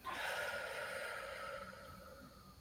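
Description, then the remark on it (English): A long, deep breath in and out, a steady airy rush lasting a couple of seconds and easing off slightly toward the end, with no talking. “And so we're going to start by breathing in. Breathing out.”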